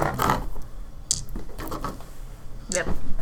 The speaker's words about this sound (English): You're rolling your morality. How do you roll your morality again? I think it's just the straight-up 7, you know, your full morality dice. Yeah, roll roll 7 dice and tell me if you pass.